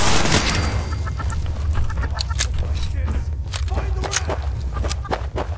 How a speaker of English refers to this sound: Was that a chicken? They have chickens in here? They do have chickens in here.